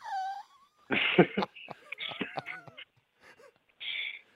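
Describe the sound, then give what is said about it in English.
A person imitates an injured schnauzer whimpering, giving a few high, quavering whines and moans in short bursts, fairly loud, with breathy pauses between them. “Tom lay on the bed whimpering like an injured schnauzer.”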